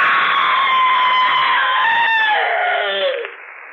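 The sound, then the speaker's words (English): A single loud, drawn-out scream holds shrill and steady for about three seconds, then slides downward in pitch and breaks off abruptly. No one speaks. “it's all over but the screaming.”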